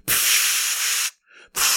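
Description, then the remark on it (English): A voice imitates a pressure washer spraying down a truck, with a loud, sustained hissing spray, breaks off into a softer breathy sputter, then bursts back into the hiss briefly, alone. “Spraying down with the pressure washer.”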